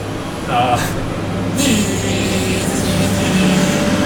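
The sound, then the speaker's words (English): A truck rumbles past, its steady low engine drone and broad road noise filling the whole stretch, swelling slightly midway, with faint voices underneath. “Another truck.”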